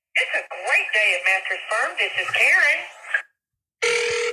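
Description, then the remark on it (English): A telephone ring tone starts suddenly near the end, loud and steady, after a short silence; before it comes about three seconds of wavering, voice-like sound. “Is anyone going to answer?”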